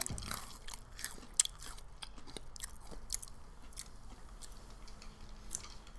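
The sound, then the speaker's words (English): Crisp crunching of food being chewed, with repeated sharp bites and irregular crackly bursts over a quiet background, no talking. “I wonder if the crunching sound that we hear inside our heads is all the same.”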